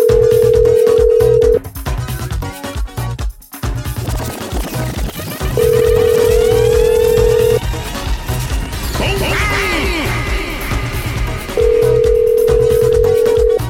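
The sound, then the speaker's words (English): A phone line rings out three times on an outgoing call, each ring a steady two-second electronic tone separated by long pauses, while busy clattering background sound continues between the rings. “Let's see if we get Pete on the phone line right now.”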